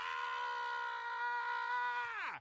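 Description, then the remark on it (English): A single sustained human scream, loud, holding a steady high pitch for about two seconds before trailing downward and cutting off abruptly. “A pretty long scream.”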